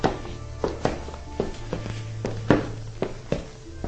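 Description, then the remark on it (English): Footsteps at a steady walking pace, roughly two per second, getting closer and closer, each a soft thudding tap over a constant low hum, with no one speaking. “She hears footsteps.”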